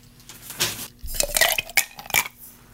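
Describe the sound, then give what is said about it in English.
A cocktail shaker with ice is shaken to mix a Red Lion cocktail. It rattles in a few uneven bursts, with bright metallic clinks and clatters rising and falling over about three seconds and no talking. “So that is the Red Lion. Let's give it a shake.”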